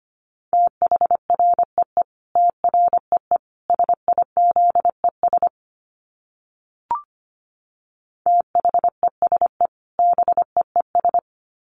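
Fast Morse code at about 25 words per minute: a steady mid-pitched tone keyed in quick dots and dashes, broken by a pause with a single click before the keying resumes.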